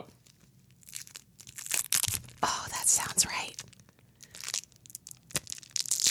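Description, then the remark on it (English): Crinkly plastic rustling and sticky peeling sounds as a sizzling red yellow fruit roll-up is unrolled by the mic and pulled from its backing, in uneven bursts of crackle, with brief quiet talking in between. “Okay, so this is a fruit roll-up, just to be clear, in case you didn't recognize the sound.”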